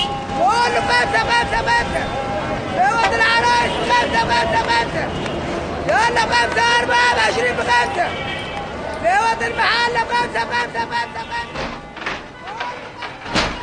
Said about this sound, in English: By midday, the noise levels in Cairo top 90 decibels. That's about the same level as a jackhammer or a chainsaw.